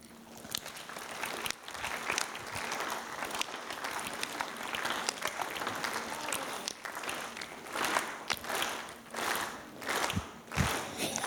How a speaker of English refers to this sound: I have a favor to ask as we kick off this new three-part series that we're doing right now. I just ask right now if you will just do me this favor and clap slowly.